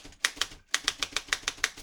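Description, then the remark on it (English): Rapid typewriter keystrokes clack in a quick, slightly uneven rhythm, about ten sharp strikes with a brief pause near the start, moderately loud with no voices. “What are you typing?”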